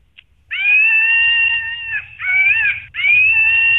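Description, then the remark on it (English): A toy monkey screeches in three loud, shrill bursts, each a high, wavering squeal held for about a second with brief breaks between, over a faint low rumble. No one speaks. “It's a toy. Oh, it's not a real monkey.”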